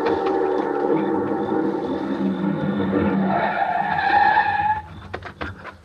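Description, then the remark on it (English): A car roars up fast on a road, its tires squealing loudly as it skids to a halt. A few sharp clicks and knocks follow in the sudden quiet. “The car was close now and moving fast.”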